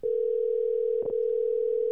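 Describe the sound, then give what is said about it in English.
A steady, mid-pitched telephone ringing tone hums without a break for two seconds as a phone call is placed, interrupted only by a brief soft blip near the middle. No one speaks. “Let me call this motherfucker up real quick, man.”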